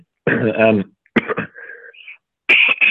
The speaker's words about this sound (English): Well, I've been sitting on that cough for a while. Leave it in. It's all okay, authentic.